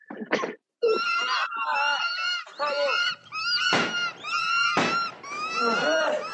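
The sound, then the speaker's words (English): Harsh, honking squawks of CGI birds in a movie, birds said to shoot acid, come in a rapid, overlapping series of loud calls, constant for several seconds with only brief gaps, like a flock of geese or large fowl crying out. “Apparently these birds wait, let's play. Look, the birds shoot acid apparently.”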